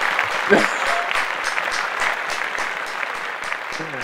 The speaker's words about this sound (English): Clap that up, please. Clap that up, man.